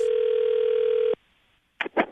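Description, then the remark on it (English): A loud, steady telephone dial tone for a prank call on the Jubal Phone Tap segment of Moving 92.5 hums for about a second, then cuts off abruptly. After a short silence come two brief, rougher bursts of sound. “Another Jubal phone tap.”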